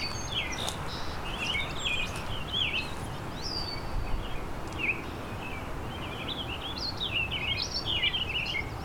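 A warbling vireo sings rambling, burry phrases of quick rising and falling notes, mixed with other birdsong from an American robin, a red-winged blackbird and a song sparrow over a steady wash of low background noise, with no talking.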